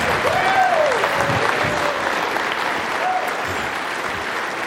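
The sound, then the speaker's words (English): A large crowd claps steadily and densely throughout, welcoming Pastor Dave Martin up to the pulpit, a sustained wash of applause with a few faint cheers or whistles rising above it. “Let's give him a round of applause.”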